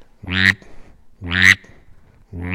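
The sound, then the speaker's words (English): A duck call mimicking a mallard drake gives low, raspy drake-style grunting quacks: three short, buzzy bursts about a second apart, fairly loud, with no talking. “But what this will do, I mean, you've got, you know, most duck calls are mimicking the mallard hen, but this one will actually mimic the drake.”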